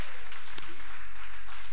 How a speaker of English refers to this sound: Yes, please clap for them.